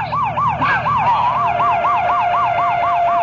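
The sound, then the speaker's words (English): A police car siren wails loudly, its pitch sweeping up and down in quick, steady cycles over a low engine rumble, with no voices, as the car responds to a robbery-in-progress call on 47th Street. “Hey, hit the lights and the siren.”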